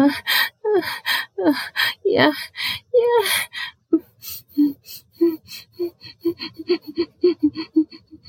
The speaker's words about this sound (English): Whimpering. Oh, whimpering is good during sex. I tend to whimper like that.